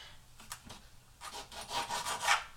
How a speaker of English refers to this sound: All right, the next thing we've got to do is do our lemons. Now listen, don't be cheaping out and buying those prepared lemon juices where you just squeeze it. Take the extra seconds, doves. Just do it. Take the extra seconds and cut your lemons.